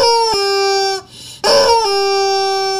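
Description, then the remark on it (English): A rubber toy chicken lets out two loud, long, nasal squawks, the first sliding down in pitch before a brief pause, the second starting with a harsh burst and holding a steady shrill tone. “It's the toy chickens that make that funny high-pitched noise.”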